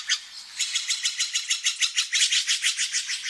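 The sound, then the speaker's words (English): A rapid, steady series of bright, high-pitched bird chirps repeats about four times a second, clear with no one talking, in the morning in a valley along the banks of the Russian River, just north of San Francisco. “Ed Herman collected these calls of birds and other creatures that echo each morning through the valley”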